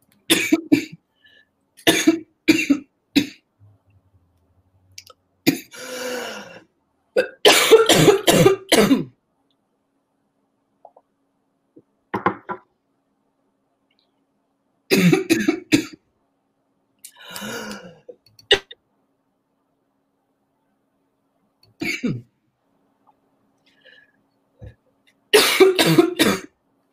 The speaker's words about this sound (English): I'm sorry, I need to cough. Hold on a second.